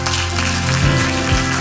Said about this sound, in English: Come on, give God a hand clap of praise.